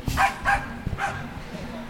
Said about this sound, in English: Sorry, we got some dogs. The dogs. These dogs have opinions. Going off here, they got small business opinions.